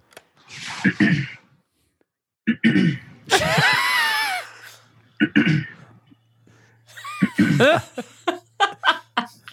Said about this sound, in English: I can't stop clearing my throat because I have no idea what's about to happen. I actually have that recorded too. Here, I'll play that.